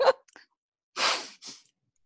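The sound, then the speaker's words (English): A short catch of breath, then a loud sneeze caused by dust in a tunnel, bursting out with a quick second puff right after it, followed by quiet; no one is talking. “Excuse me, this dust in this tunnel has caused me some problems.”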